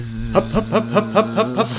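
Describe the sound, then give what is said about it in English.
A voice imitates a bee with a steady, droning buzz while another voice chants a quick, rhythmic series of about eight short hupping sounds over it. “I'll make a buzzing sound and you make a hup, hup, hup.”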